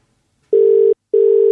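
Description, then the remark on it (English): A telephone ringing tone sounds twice as a call is placed to a friend: two steady, slightly buzzy pulses of equal length separated by a short pause, clear, with no one talking. “So it's time to phone another friend.”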